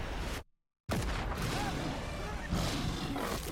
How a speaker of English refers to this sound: Oh, fuck that, dude. Oh man, getting mauled by a CG fucking lion.